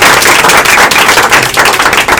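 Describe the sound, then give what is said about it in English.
Steady, dense applause from a seminar audience welcoming a speaker, many hands clapping at once in a loud continuous patter with no pauses and no voices. “We can give her lots of applause.”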